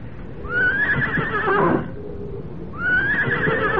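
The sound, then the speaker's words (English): A horse tethered in the woods neighs twice, two loud whinnies with a rising, quavering pitch, separated by a brief pause. No one speaks. “Then I made the long walk back to the woods, back to my horse, to my old friend, who stood patiently tethered, waiting for me, trusting in me.”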